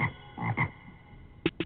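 A frog croaks five times, fairly loud: three quick throaty croaks, a short pause, then two more sharp ones in quick succession. No voices.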